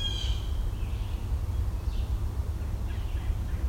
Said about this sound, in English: That right there. American goldfinch singing and blue jay singing.